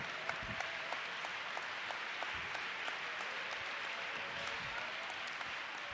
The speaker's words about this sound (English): Why don't you clap your hands to the Lord right now?